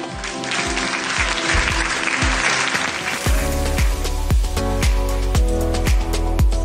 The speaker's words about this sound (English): I don't know how you do it here, but when they come, we usually give them an applause. Praise God. Praise God.